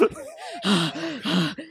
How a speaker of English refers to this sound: If you need to probably listen to … to understand what all the heavy breathing's about.